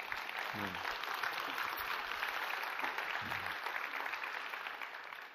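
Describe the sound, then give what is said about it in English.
A crowd applauds steadily, a dense wash of overlapping claps at an even loudness, with a couple of brief voiced calls in the mix, tapering slightly toward the end. “You gotta clap for that.”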